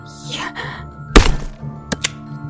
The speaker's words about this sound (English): Screams filled the house as Cinderella hammered down the axe and severed her stepmother's body.